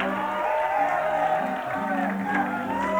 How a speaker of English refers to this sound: You think we're shouting because we're good? No, we're shouting because He's God.